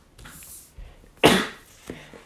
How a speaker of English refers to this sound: I'm gonna sneeze.